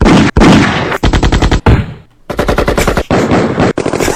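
Rapid bursts of loud automatic gunfire sound effects, several volleys of fast repeated shots separated by brief pauses, dominant with no talking.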